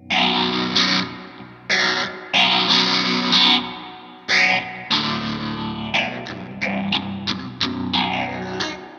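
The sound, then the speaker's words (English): Loud electric guitar with overdrive and a swirling phaser, strumming heavy chords in bursts that ring out, then quicker choppy strums toward the end, with no talking. “Let's put on some overdrive and some phaser.”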